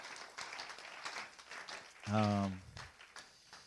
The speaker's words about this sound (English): Hey, let's give the Lord a clap tonight. Praise Him.